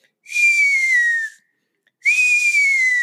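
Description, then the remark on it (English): A voice imitates the thin, eagle-like call of a jay named Fluffy, heard from a tree by a creek: two drawn-out, airy whistled screeches, each about a second long, sliding slowly downward in pitch with a short silent gap between them. “And so I'm sitting there watching them play in the creek, and all of a sudden I hear the strangest, like eagle call that I've ever heard in my life.”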